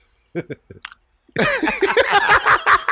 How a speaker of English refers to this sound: Let them hear your chew. No, it's fine. It's really good.